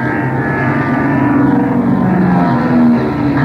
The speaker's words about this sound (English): Not if them planes dive steep enough, we ain't.